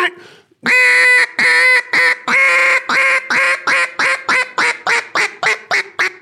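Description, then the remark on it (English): A duck call blown, giving a loud run of raspy quacks that start long and drawn out, then grow shorter and quicker as the sequence tapers off. “And that's a really difficult part of duck calling, is having the confidence to pick that call up.”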